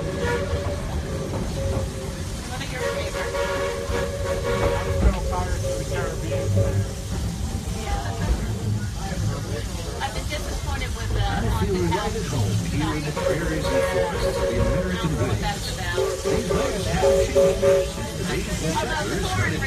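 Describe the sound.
A steam train of the Walt Disney World Railroad rolls steadily along the rails, with a continuous rumble, hissing and clatter, and sustained whistle-like tones rising over it at a few points, while muffled voices sit underneath.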